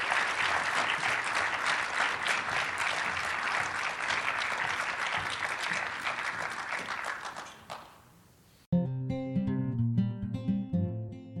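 A crowd applauds steadily in a dense wash of clapping for about eight seconds, fading out, then a bright musical passage with clear tones and plucked notes begins.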